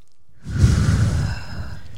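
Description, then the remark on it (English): A single deep, slow breath drawn from the belly and let out with a breathy rush, fairly loud, ending in a soft sigh-like exhale with no talking. “And but breathing from your belly, like from your belly is like.”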